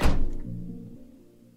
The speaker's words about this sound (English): My guy keeps dying, Mom, one of them shrieks as the van door slams shut.